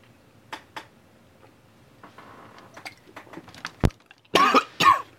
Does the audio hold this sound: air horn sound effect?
no